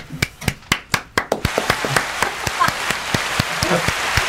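Applause begins with a few sharp, separate claps that quickly thicken into a steady patter of many hands clapping together, moderately loud and continuing without any voices over it.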